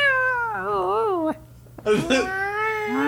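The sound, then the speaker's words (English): Long, wavering yowls from a cat in heat rise and fall in pitch, two drawn-out caterwauling cries separated by a short pause, loud with a faint steady hum underneath. “You know when animals are in heat? Like, it's like a cat?”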